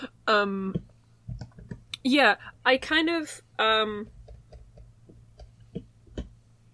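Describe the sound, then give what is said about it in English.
Ten-sided dice clatter in a scattering of small, sharp clicks and taps, fairly quiet, following a few drawn-out vocal sounds from a person. “That's how you roll. Oh no, I have dice. I find some d10s.”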